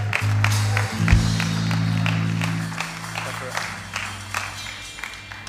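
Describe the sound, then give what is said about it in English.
An audience claps steadily for several seconds as a woman comes up to speak about the mission prayer team, a dense patter of many hands that eases slightly toward the end, over a low droning hum. “So come on, let's give her a clap as she comes.”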